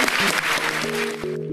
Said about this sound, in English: And just finally, if we could just give a round of applause for our wonderful speakers. Thank you so much.